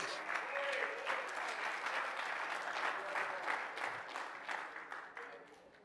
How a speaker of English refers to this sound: If you believe that tonight, clap your hands and praise Him.